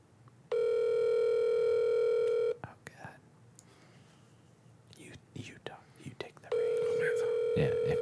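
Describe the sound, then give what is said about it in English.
An outgoing phone call to a man's number rings on a phone's speakerphone: two long, steady electronic ringback tones separated by a few seconds of quiet whispering and shuffling. “Then hit the phone next to his number.”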